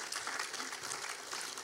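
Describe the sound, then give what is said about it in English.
A crowd claps steadily, a dense wash of many hands applauding together at an even level with no voices, applauding three people thanked for a travel mission trip. “Yeah, get a clap for them, I tell you.”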